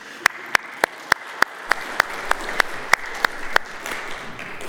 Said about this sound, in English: Any teachers in this room, or any retired educators? All right. Okay, so can we applaud them, please?